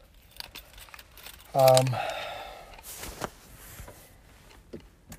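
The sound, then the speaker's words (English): Keys jingle and rattle in brief bursts as a person leaves a Walmart store, alongside a short loud electronic chirp, with faint background noise and no clear speech. “I'm leaving Walmart now. So that's where you hear the keys.”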